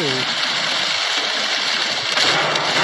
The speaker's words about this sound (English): The pretend rain. I'm an American and I choose to like artificial rain.